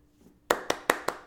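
Five sharp hand claps in a steady, even rhythm follow a brief near-silence, each clap crisp and loud with a quick decay, like one person clapping alone, giving a round of applause for Black History Month 2019.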